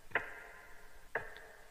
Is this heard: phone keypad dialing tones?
no